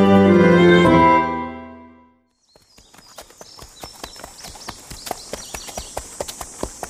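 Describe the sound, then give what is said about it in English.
A sustained musical tone fades out, then the hooves of a horse being ridden clip-clop at a steady walking rhythm, moderately loud, continuing evenly to the end. “I've got you handcuffed onto your horse. We're riding along back towards West Buzzard's Bottom.”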